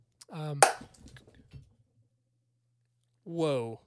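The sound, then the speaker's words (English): A light bulb explodes with one sharp, bright pop, followed by a brief scatter of faint tinkling bits, leaving a smell like gunpowder. A voice cries out just before it, and another exclamation follows after a pause. “But a light bulb just exploded, and it smells like gunpowder in here.”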